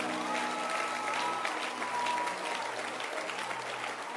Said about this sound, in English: Can you clap your hands for the church?